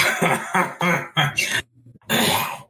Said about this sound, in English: So. Okay. Let's clear my throat.